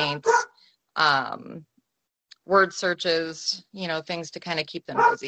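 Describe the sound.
A dog barks excitedly in loud, repeated bursts near the microphone while a person keeps talking over it.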